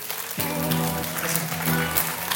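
An audience breaks into sustained applause, a dense crackle of many hands clapping that starts abruptly and holds steady, with a faint tonal hum beneath it.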